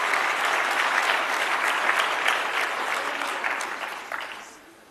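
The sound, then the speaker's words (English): A crowd at a convention claps for the announced winner, runner-up and third place, a dense, even wash of applause that holds strong for about four seconds, then gradually thins and fades out. No voices are heard. “Let's also give them a round of applause.”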